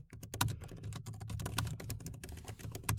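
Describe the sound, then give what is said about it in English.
Rapid typing on a computer keyboard, a steady stream of crisp key clicks with irregular rhythm and a few louder keystrokes, with no voices. “You can hear me typing, people of the podcast.”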